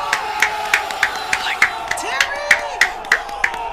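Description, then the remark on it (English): A small group, the Craft Creative team in a studio, gives themselves a round of applause, sharp claps landing in a steady, quick rhythm while whoops and cheering voices rise and fall over them. “Guys, you can give yourselves a round of applause.”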